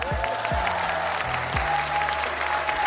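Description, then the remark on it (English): A steady round of applause for a rapper, a dense patter of clapping throughout, with a low, thumping tone rising and falling underneath. No voices. “Round of applause for … on this one.”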